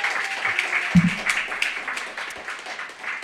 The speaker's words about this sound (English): One more round of applause for our featured reader